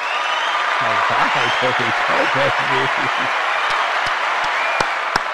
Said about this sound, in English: One second, let me see if my applause is working.